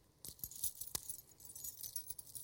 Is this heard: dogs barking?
no